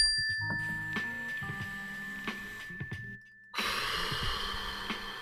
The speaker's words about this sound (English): When you hear this bell, just take a deep breath and let's get grounded. Ready?